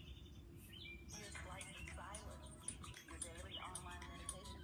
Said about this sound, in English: Good morning, y'all. The birds are singing and welcoming you to a new day.